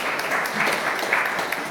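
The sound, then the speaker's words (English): A crowd at a service claps for the children in steady, dense applause, a continuous crackling patter of many hands at an even, fairly loud level with no voices standing out. “Give the kids a wee round of applause.”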